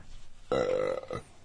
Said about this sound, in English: Shitty burps? Mm-hmm. We had one of those earlier. You had a shitty burp. Just now, it was a shitty weak one.